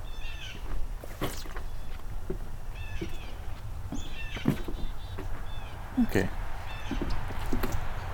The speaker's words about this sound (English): Couple catbirds, gray catbird.